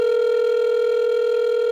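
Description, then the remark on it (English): A steady, unbroken telephone ringing tone of a call placed to a cell phone on the Laika Mobile network hums at an even pitch, fairly loud and clear, with no voices or other sounds around it. “I tried calling him many times.”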